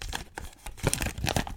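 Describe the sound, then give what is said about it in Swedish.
A yellow slip of paper bearing the name Helena Costa is pulled from a bag with a short burst of dry rustling and crinkling, a few scratchy bursts over about a second and a half, with no voices. “Jag drar den här lappen.”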